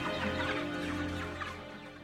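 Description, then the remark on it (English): A flock of chickens at Chaco's plant, in a film's final scene, clucks and murmurs continuously, several birds overlapping at a steady, moderate loudness with no voices. “The final scene suggests that Chaco's remains are being fed to chickens at his plant.”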